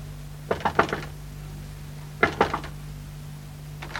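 Two quick bursts of knocking on a neighbour's door next door, three or four raps each, followed by a faint start of another, set against a steady low hum.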